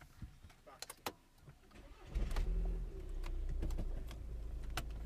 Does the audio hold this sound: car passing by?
yes